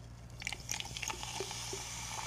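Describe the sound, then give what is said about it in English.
A woman pours orange seltzer soda from a bottle into a cup: a continuous fizzing hiss dotted with small crackling pops and bubbly clicks, fairly quiet, with a low steady hum underneath. “So basically, this lady has a bottle of seltzer, orange seltzer soda, that she's going to pour into a cup.”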